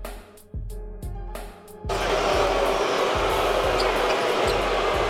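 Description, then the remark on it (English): A Lakers basketball crowd breaks into loud, sustained booing after a few quiet seconds of a basketball bouncing, and the steady dribbling thuds keep going beneath the jeering. “They're really booing. That's not a small faction of fans up in the high seats.”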